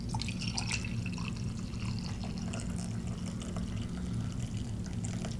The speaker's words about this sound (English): All right, it's done brewing. Gonna pour myself a cup of coffee.